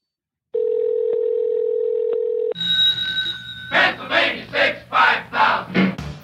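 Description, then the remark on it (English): A telephone ringing tone on a call to the Hotel Pennsylvania's phone number, different from how phones ring in New Zealand: one steady, humming two-second ring with no voices, then abruptly replaced by a brighter, louder burst of rhythmic pulsing noise. “very different from the way the phones ring in New Zealand. I don't think anyone's going to pick up, and I don't think it's going to go to voicemail.”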